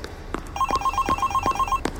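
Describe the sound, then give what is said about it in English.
A telephone rings with a rapid electronic trill, a quick run of bright, evenly spaced pulses, with a few soft thumps and clicks around it and no voices. “Oh, the phone!”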